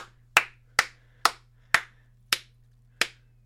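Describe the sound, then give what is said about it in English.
The host of the Midweek Morning Show claps alone six times, sharp and crisp, with the pace slowing slightly toward the end. A faint steady low hum runs underneath, and no one speaks. “Why is it just me clapping, huh?”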